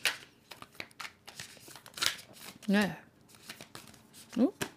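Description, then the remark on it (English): Quick, papery riffling and flicking of a deck of tarot cards being shuffled, in short uneven bursts, with a voice speaking briefly in between. “And she's curious about my deck. And she's sniffing at me, shuffling it.”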